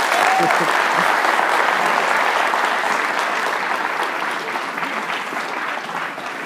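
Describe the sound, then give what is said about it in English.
Applause from a small crowd, a dense patter of clapping that stays steady and fairly loud throughout, fading slightly toward the end, with a brief voice early on. “Tiny crowd. But responsive.”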